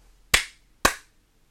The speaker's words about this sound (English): Two claps.